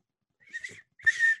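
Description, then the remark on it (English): A person tries to whistle like a cricket, producing two short, breathy, wavering whistle bursts separated by a brief pause, with no talking. “Well, I can whistle like a cricket.”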